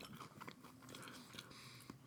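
Crisp crunching of someone chewing French Toast Crunch cereal, with quick irregular bites and a steady mouthy texture, no talking over it.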